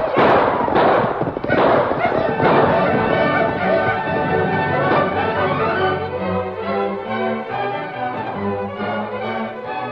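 A rapid series of distant gunshots crackles and thumps over a dense, busy backdrop, the bursts strongest early and then easing as a sustained tonal sound takes over.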